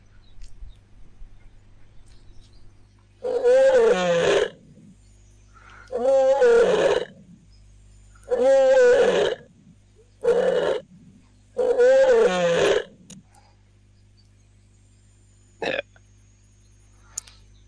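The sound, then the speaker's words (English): A lion roars in five loud, drawn-out bellows, each about a second long and spaced a second or two apart, followed by quiet with a faint low hum underneath. “I'm not sure whether you could hear the audio, but we discovered that the only animal that walks towards a lion roar is another lion.”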